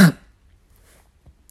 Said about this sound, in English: Harry heard Uncle Vernon cough.